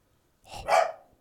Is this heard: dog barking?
yes